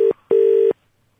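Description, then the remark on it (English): A phone line ringing out during a radio phone-in: a steady electronic ringback tone in a short burst followed by a longer double-length burst, clear, then silence. No one speaks. “we'll keep it ringing while we talk to you”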